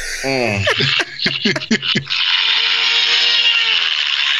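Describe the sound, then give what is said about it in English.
A helicopter engine screams at a high, steady pitch, broken first by a quick burst of sharp rattling clicks before the shrill whine holds loud and unbroken to the end. “Can we all just have a moment of silence for the sound this thing makes?”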